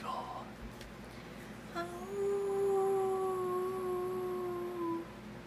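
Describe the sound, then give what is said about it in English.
A person imitates a wolf howl with one long, sustained, slightly wavering tone lasting about three seconds, following a brief murmur and a sharp click. “See, that's like a wolf howl.”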